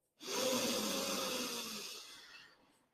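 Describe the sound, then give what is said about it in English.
A long, deep breath drawn in through the nose during a guided breathing exercise, airy, swelling quickly and then tapering off gradually over about two and a half seconds, with no talking. “Breathing in together.”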